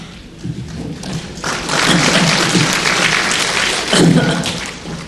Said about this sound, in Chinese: 你们一直鼓掌，在这个回去的时候手都会痛啊。